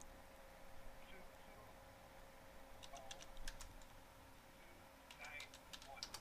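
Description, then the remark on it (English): Two short bursts of quick keyboard typing as someone enters a customer's phone number, a handful of crisp key clicks each, heard fairly quietly over a steady low hum and faint background noise. “I must be typing it in wrong.”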